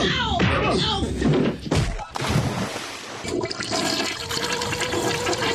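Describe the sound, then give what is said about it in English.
A toilet flushes loudly, a sharp thunk of the handle followed by a rushing, gurgling swirl of water that churns steadily for several seconds. “Hey, Rob, I'm pushing the knob.”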